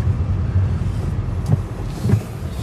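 A Mini Cooper's engine hums steadily from inside the cabin while driving with the sunroof open, a low continuous drone with road rumble and a couple of faint clicks or bumps, no one talking.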